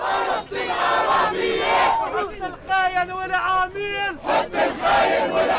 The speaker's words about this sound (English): Waving Palestinian flags and shouting, "Palestine is Arab," protesters marched through the streets of Jerusalem.